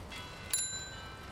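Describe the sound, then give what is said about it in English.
A single bicycle bell rings once in Copenhagen, bright and metallic, its tone lingering briefly over a steady low hum of city traffic. “Okay, in Copenhagen there are more bicycles than in other places.”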